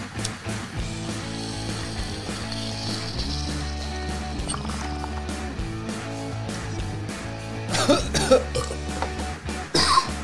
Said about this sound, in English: Right, that was a little dumb. Nobody wants to hear coughing into a microphone.